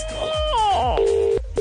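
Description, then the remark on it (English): A telephone ringing tone from a number just dialed: a steady, mid-pitched electronic tone that cuts off briefly and then starts again, preceded by some wavering tonal sounds, with no talking. “Oh, it's ringing.”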